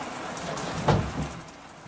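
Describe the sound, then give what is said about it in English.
Steady rain falls in a dense, even hiss, with a brief louder burst of drops near the middle and a faint low rumble underneath. No voices. “Ditches. A line of poplars. The sky. Rain.”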